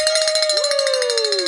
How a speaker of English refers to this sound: So if you'll reach over there and grab that bell so we can ring the bell for meeting our goal for the 9 a.m. hour.